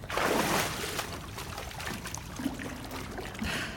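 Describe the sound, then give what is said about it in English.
A loud splash bursts into water at the start as a fish jumps and lands back in the water, then fades into sloshing and trickling water movement for a few seconds. “The fish jumped once more and landed with a larger splash than should have been possible.”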